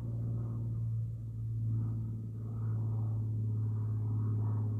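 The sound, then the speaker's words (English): A steady, low mechanical drone of a passing helicopter, rumbling continuously with gentle swells in loudness and no voices. “Listening for the passing helicopter.”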